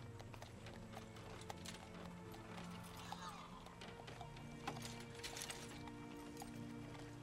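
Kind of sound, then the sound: animal, horse-drawn carriage hooves clip-clopping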